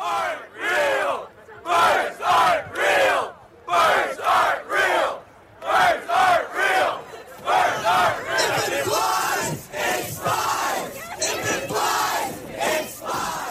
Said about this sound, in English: This is from what's called a bird truther protest. Oh, no. It comes from the satirical conspiracy theory that has a pretty provocative claim that birds aren't real.